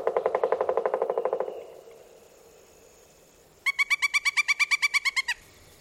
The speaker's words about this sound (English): Other sounds included call and the drum of a pileated woodpecker.